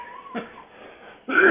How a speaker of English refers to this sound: Hear that when I said first baby, it just struck me like an allergy, and I had to cough.